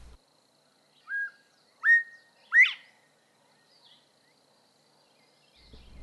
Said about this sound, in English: The call of the bobwhite is the easiest call you can possibly remember, Bob White. This particular bobwhite is saying, "I'm Bob White," but you will also hear just the plain Bob White.